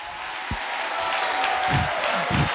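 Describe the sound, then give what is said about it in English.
An audience clapping together, a dense, steady wash of many hands that holds evenly throughout, with a few duller low thumps mixed in and no clear voices. “Come on, come on, clap to that.”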